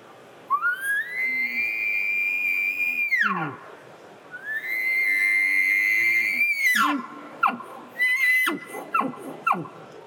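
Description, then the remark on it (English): Two long, high whistling elk bugles blown on a lip ball elk call, the lips vibrating against the tube, each rising, holding steady and sliding down, followed by a rapid series of short, chuckling grunts. Loud, with no talking. “Basically, as you put pressure to that tube, your lips vibrate and you're blowing a bugle with that, and that's when you're going to get that lip ball sound.”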